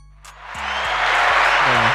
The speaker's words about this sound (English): Hold on, hold on. We're getting a nice little applause for that.